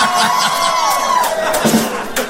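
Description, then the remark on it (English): A crowd cheers and applauds loudly, with whoops and high shouts rising above a steady wash of clapping, sustained throughout with no pause. “How about a nice round of applause for me on the vocal?”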